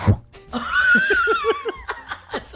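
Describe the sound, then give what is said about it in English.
A voice imitates a dog sniffing with a quick run of short, rhythmic breathy bursts, fairly loud, over a faint whistling tone, with no speech. “Like a dog sniffing near your ear.”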